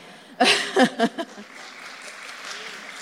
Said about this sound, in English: Anybody in here run a marathon before? Y'all just need to give them a hand of applause right now.